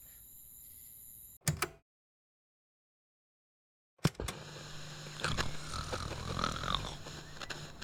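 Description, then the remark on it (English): Loud, rasping snoring of a sleeping person rumbles after a short pause of silence, continuing steadily to the end with a rough, throaty texture. “Just so you know, you snore. Loudly.”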